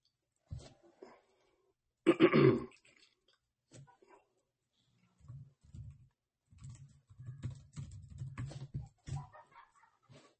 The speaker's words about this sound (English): I type hard, you know. Like this ain't because I'm like the people at work be like, why are you typing so hard?